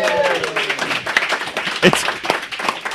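A crowd breaks into applause, a dense crackle of many hands clapping at once with a few louder claps, while voices call out over it at the start.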